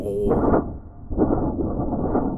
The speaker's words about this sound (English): unless you've got a team of sound artists right there with you, doing it as you record your dialogue straight in, just like they used to on the radio, thunder noises.